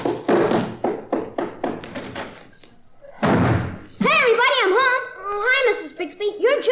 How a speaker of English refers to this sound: Well, if the kitchen's still standing up the way you slammed that door, you'll find some apple pie in the icebox.